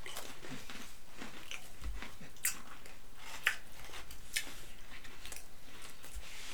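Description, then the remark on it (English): Several people chew a sour, citrus-flavored food, with wet, crunchy bites and mouth sounds overlapping in an irregular rhythm; a few sharper clicks stand out, and nobody speaks. “We're all chewing.”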